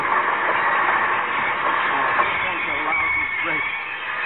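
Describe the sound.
A passenger train with a dining car rolls along the rails in a steady, unbroken rumble for several seconds, loud, with faint voices blending into the noise.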